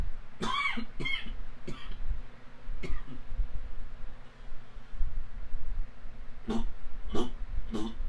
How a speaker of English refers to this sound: Sorry about that, everyone. That cough just snuck up on me. The allergy coughs that they tend to do.